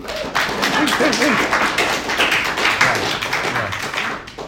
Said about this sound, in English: Can we clap for my wife?